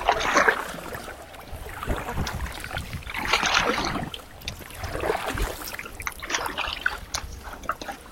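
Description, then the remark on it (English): A canoe paddle dips and pulls through water in a slow, uneven rhythm, bringing up seaweed with every stroke, each stroke bringing a burst of splashing and dripping, with a steady wet swishing between strokes and no voices. “can't believe how much seaweed I'm getting up every single time. Feels like we're a dredger rather than a canoe.”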